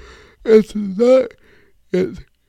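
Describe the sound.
A fairly loud drawn-out yawn from a person talking at 9:55 p.m., a long voiced groan rising and sagging in pitch with a breathy edge, followed after a pause by a shorter vocal sigh.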